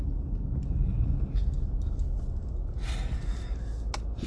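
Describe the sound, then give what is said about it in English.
A steady low rumble of a car engine idling in traffic behind a stopped truck, heard from inside the car, continuous, with a few soft breathy rustles now and then and no speech. “I'm fucking sitting behind a truck that isn't even going anywhere, you son of a bitch.”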